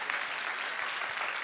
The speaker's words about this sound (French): Ah, si c'est toi, donne une bonne main d'acclamation.